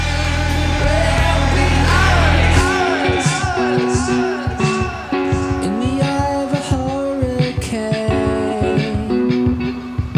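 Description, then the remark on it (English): A loud roar of wind made with white noise on a synth fills the opening seconds of a song's hurricane section, then gives way to busy synth music with repeated swooping, gliding tones that rise and fall like gusts. “then we have white noise on the synth for the wind, and I think the wind made it in, didn't it? So this is the hurricane bit coming up.”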